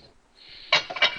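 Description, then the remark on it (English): A glass 8 by 10 inch baking pan is set down and shifted, giving two sharp clattering knocks with a bright, brief ringing edge, preceded by a faint steady hiss. “8 by 10 inch pan here.”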